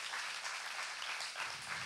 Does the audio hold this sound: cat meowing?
no